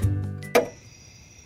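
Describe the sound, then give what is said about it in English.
A clock ticks at 3 a.m., one sharp click standing out over a few fainter taps, followed by a thin ringing hum and stillness. “Hey, it's 3 a.m. and the ticking clock seems as loud as a jackhammer,”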